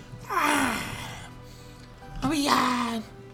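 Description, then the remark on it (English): Two drawn-out, breathy yawning sounds, each sliding down in pitch, made by a voice imitating a long yawn and stretch; fairly loud, with a short pause between them. “Skid gives a long yawn and stretch.”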